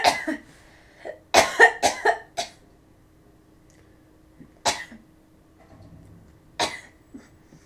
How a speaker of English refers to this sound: There's a person who wants to keep the cough in there and go, you got the black lung pop.